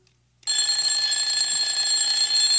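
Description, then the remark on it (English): After a short silence, an alarm clock bursts into a loud, continuous shrill ring that holds steady without pause until the end. Nobody speaks. “it's God sounding the alarm through this guy, saying, hey, wake up.”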